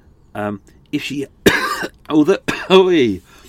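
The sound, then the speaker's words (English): A few sharp coughs break out in quick succession, mixed with short voiced throat sounds and rasping breaths between them. No clear words are spoken. “I haven't had a cup of tea, that's why I'm coughing.”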